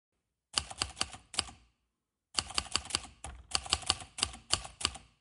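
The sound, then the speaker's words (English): Rapid keystrokes clatter in two bursts separated by a brief pause, a brisk irregular rhythm of someone typing up last night's notes, with no voices. “Typing last night's notes, I see.”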